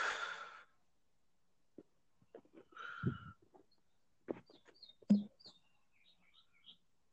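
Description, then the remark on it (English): A bird calls with a series of short, high chirps in quick succession, fairly faint, after a breathy exhale and a few soft knocks. “You hear that? Lap. Fucking bird.”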